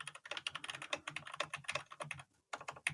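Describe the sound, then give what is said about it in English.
Rapid, irregular clacking of a computer keyboard with new pastel rainbow keys as someone types down an expression, fairly loud, with a brief pause near the end before the tapping resumes. “He's actually typing it.”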